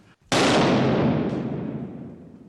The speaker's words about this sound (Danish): In a few seconds, you will hear a shot, and that will be the end of our little problem.